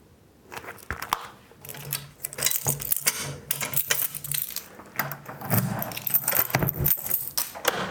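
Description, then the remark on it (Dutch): Keys jangle and clink for several seconds as they are carried inside into an old bedroom with a hatch in its door, a bright, irregular metallic rattling with brief pauses between bursts, heard alone without any talking. “Dus ik neem de sleutels mee naar binnen.”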